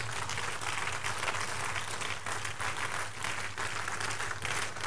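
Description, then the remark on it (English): A church audience on its feet applauds steadily as a clap offering to the Lord, a dense wash of many hands clapping at once with no pause, loud and sustained over a low hum. “Give the Lord the biggest clap offering this morning.”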